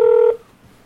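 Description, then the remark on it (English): A short, loud electronic telephone ring tone sounds once over the line as a call is placed to a guest, a steady buzzy pitch that cuts off after about a third of a second, leaving faint line hiss. “It's ringing.”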